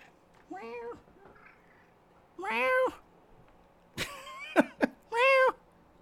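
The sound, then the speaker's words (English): A cat meows several times, a few drawn-out, wavering calls mixed with short, sharp chirps, separated by brief quiet pauses. “So, could you hear the chirp? Meow.”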